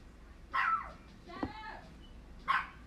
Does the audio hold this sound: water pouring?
no